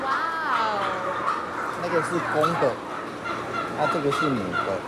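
A flock of turkeys raised by Yang Pianghua's family in Jiayi County, Taiwan, gobbles continuously, their warbling, rattling calls overlapping into a loud, steady chorus that rises and falls in short bursts for the whole stretch.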